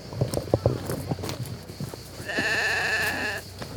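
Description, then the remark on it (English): A sheep lets out a single long, wavering bleat partway through, clear, following a few seconds of scattered clattering and shuffling sounds outdoors on a steep slope with rosemary bushes, a walnut tree and a loquat tree, near several donkeys. “Walk down through quite a steep slope, past some rosemary bushes, under a walnut tree, under a big loquat tree, past a sheep and a donkey, several donkeys.”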